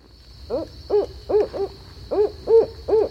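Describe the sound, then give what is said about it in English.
A barred owl hoots in a rhythmic series of about eight arched, slurred notes grouped in bursts, moderately loud, with no voices and a faint steady high hiss behind. “Okay, so here's the barred owl. And again, we're listening for who cooks for you?”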